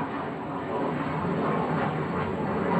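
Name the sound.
jet aircraft flying overhead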